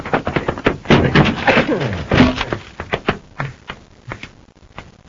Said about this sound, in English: Force the door